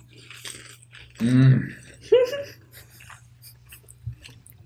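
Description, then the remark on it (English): Crunching on crisp sesame crackers, a scattering of dry, brittle bites and chews, broken up by a couple of short voiced hums or murmurs. “And this is the part of the episode where we crunch and That's all.”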